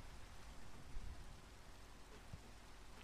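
Steady rain hisses as a dense, even wash of noise, with a low rumble of thunder rolling underneath; no voices, just the continuous downpour at a fairly quiet level.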